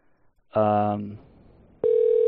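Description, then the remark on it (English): An outgoing phone call rings: a short electronic ring tone bursts out and fades, then a steady, loud tone starts and holds to the end. No one speaks. “He's not going to answer. We ring in.”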